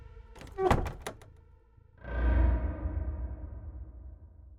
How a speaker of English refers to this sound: And I slowly pulled the door tight behind me.